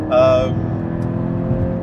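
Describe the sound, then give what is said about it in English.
A car engine gives a loud, brief rev with a bright harmonic exhaust tone near the start as the car accelerates, then settles into a steady, rumbling drone. “It's not got a bad noise to it. But it sounds the exhaust that good.”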